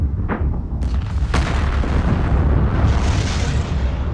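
A Saturn V rocket, used in the Apollo program, launches with a loud, continuous roar, a dense rumbling blast with sharp crackling bursts near the start that swells into a sustained, powerful thunder with no voices; its sound was measured at 204 decibels.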